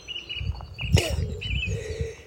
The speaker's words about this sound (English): That bird that's making a racket now.